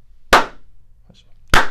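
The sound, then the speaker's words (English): Two sharp, loud hand claps made to create a spike for syncing recorded audio, about a second apart, each a crisp snap with a short decay and near silence between them. “You're supposed to clap. That way you can see the spike and you can match them up better.”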